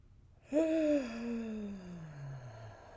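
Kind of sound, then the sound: human body sound, big yawn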